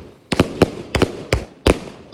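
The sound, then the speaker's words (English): Fireworks going off in an irregular burst of sharp, loud bangs, seven or eight cracks in about two seconds, some landing in quick pairs, with no voices. “24-hour fireworks, except on acceptable days.”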